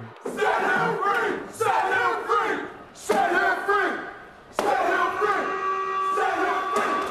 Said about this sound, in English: Okay, I want to know which one of the niggas threw the chair, though.